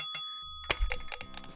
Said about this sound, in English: Ooh, tapping, tapping. My water bottle.